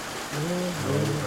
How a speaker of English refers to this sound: And I love the rain.